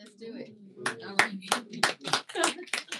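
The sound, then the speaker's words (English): An audience breaks into clapping after a brief murmur of voices, applauding a planned April visit to Austin, Texas, for the 21st birthday of Nuestra Palabra; the claps land as sharp, uneven bursts that keep going at a fairly steady loudness until the end. “By the way, Dan, we're not applauding you.”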